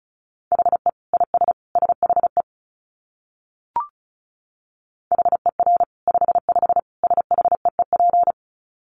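Rapid Morse code at about 35 words per minute: a steady mid-pitched beeping tone keyed in quick dots and dashes, two bursts of sending separated by a pause with a brief click.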